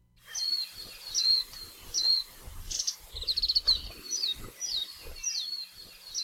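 Warbling white-eye (mejiro) song, a small green and gray bird introduced to Hawaii from Japan, in a recording from the Cornell Lab of Ornithology: a steady series of high, thin, rapid chirps and twittering phrases, clear, over a faint insect-like hiss with some low thumps.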